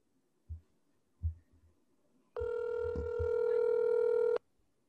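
A phone call being placed: a couple of soft, low taps, then a single steady, buzzy ringing tone that holds for about two seconds before cutting off. No one speaks.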